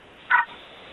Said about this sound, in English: Yeah, little dog yapping in the background.